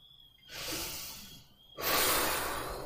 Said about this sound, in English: Good breath. I don't think I've been breathing. No, I've been trying to breathe more. Breathing's so important, yo. Take that breath.